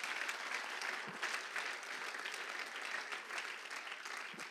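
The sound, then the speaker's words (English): A crowd claps their hands to thank God for his love, mercy and grace, in a dense, steady burst of applause that holds at an even, fairly loud level throughout, with no voices standing out. “Can you clap your hands and thank God for his love and his mercy and his grace?”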